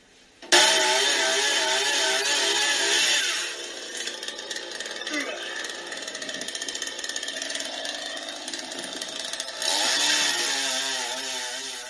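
A chainsaw roars as it cuts tree branches, revving high with a wavering pitch, settling into a lower, rougher drone mid-way as if biting into wood, then revving up loudly again.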